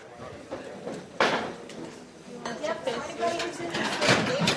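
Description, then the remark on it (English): Chairs scrape and clatter across a hard floor as they are moved and lined up along the side of the room to clear a dance floor, several overlapping drags and knocks, with indistinct voices murmuring underneath. “Make sure all the chairs are over there.”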